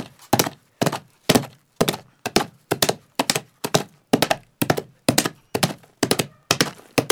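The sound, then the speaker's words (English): Foley galloping hoofbeats made with two hooves to imitate a horse's gallop: loud, hollow wooden thunks repeating in a steady rolling rhythm of about two beats per second, each with a sharp attack and quick decay, with no voices. “Like a gallop kind of sound, which is pretty cool.”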